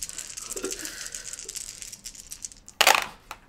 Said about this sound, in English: Oh, that's a lot of dice.